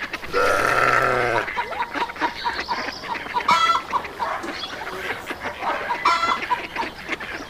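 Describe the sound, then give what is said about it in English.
A busy farmyard on a farm: chickens cluck and squawk while goats let out a few bleats, one loud one at the start and more scattered through the scene, with no talking. “He loved feeding the goats, collecting eggs from the chickens, and picking the beans.”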